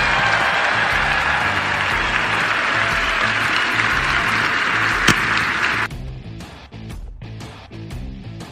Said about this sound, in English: I wouldn't be able to inspire nobody if I didn't have the sacrifices and the commitment from my starting five right here. So please give them a round of applause, please.